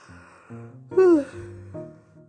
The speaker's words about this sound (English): Excuse me. It was a big yawn.